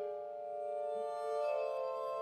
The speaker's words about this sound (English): So the piece is called... there we go. This is the glass harmonica version.